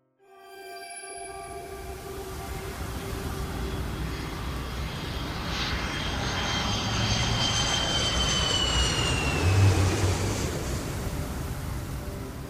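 A loud, steady airplane engine drone fills the whole stretch, a dense roar with a sustained whine on top that swells slightly toward the end, with no voices.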